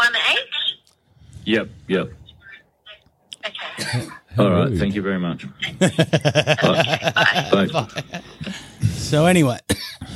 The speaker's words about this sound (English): So anyway, excuse me, got the coughs.